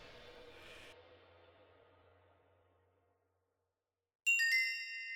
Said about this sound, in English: Sound the gong. The fight is on!